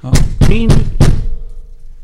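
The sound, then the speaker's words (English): Four quick, solid knocks in an even rhythm, like knuckles on a door, fairly loud, with a faint murmur of sound between them and a short quiet tail after. “I assume that was four knocks, wasn't it?”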